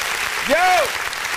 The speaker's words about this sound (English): Clap it up.